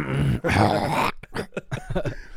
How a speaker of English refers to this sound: Why are you coughing, bro? That's the first contribution is a cough.